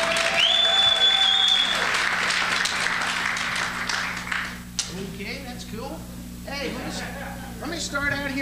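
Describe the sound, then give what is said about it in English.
A crowd at a live show applauds loudly, voting by applause on a performer's question, with dense, steady clapping and a brief whistle, then the applause fades as a man starts talking over the lingering claps. “So instead of just delivering you this plain old boring vanilla headline act, instead, by applause, how many of y'all would rather just see me make a complete jackass out of myself?”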